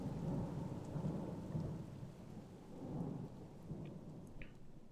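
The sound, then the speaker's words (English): A deep, rolling peal of thunder rumbles through steady rain, swelling and fading in low waves across the whole stretch while raindrops patter continuously underneath. “A fearful peal of thunder made them all start to their feet, and Mrs.”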